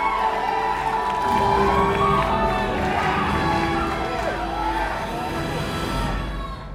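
A packed movie theater audience at a Black Panther screening erupts in loud, continuous yelling and cheering, with overlapping shouts and whoops filling the room for several seconds before easing slightly at the end.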